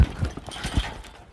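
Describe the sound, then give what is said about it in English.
Horse hooves clip-clop in an uneven walking rhythm as a horse is ridden, about five dull thuds in quick succession that ease off slightly toward the end, with no talking. “We've rode by about 4,000 head of cattle already today, but this one stood up, and apparently she didn't like it.”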